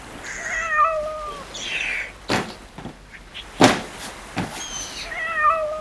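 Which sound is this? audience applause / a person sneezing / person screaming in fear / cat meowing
cat meowing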